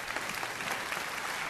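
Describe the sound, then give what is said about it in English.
An audience applauds, a dense, steady patter of many hands clapping at once, sustained and fairly loud throughout with no voices standing out. “Come on, let's clap for the guy.”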